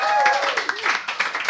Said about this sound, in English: Please clap for her because she's right there.